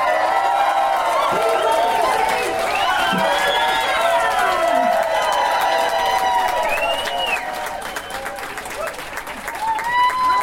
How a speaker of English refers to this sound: You'll start clapping. Just everyone start clapping. Go fucking gaga.